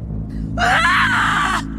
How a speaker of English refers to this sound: The bubble shot into her mouth and burst out of her, only it wasn't a bubble, it wasn't air. It was a scream.